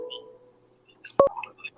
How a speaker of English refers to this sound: Yeah, we got a phone call.